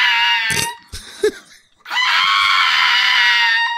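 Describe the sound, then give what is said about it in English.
A small pug dog lets out a loud, sustained, scream-like yowl, breaking off briefly before launching into a long, high-pitched wail that carries to the end. “Yeah, so our audience listening, that was the dog just yelling for no reason.”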